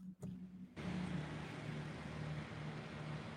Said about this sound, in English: You know, give me one second. There's a big truck passing by.